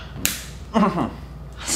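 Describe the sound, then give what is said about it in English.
A single sharp slap on bare skin of a sensitive area under pressure cracks out near the start, followed by a short pained vocal sound and a faint breathy noise at the end. “It's like, you know, a slap like that doesn't usually feel like anything, but because there is pressure in that sensitive area.”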